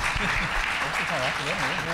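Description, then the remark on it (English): An audience breaks into steady, sustained applause for God, a dense wash of clapping with voices faintly audible beneath it. “Give God a big round of applause.”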